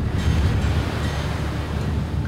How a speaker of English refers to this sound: So the waves, look, the waves are getting so big.